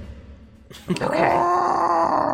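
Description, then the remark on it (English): After a brief quiet moment, a voice lets out a long, rough, sustained roar, imitating a distant monster roaring during a role-playing game. The roar holds steady and loud to the end, with no other talk. “And you do, when you blow the whistle, you do hear, it doesn't really make any sound, but but you hear just a distant roaring.”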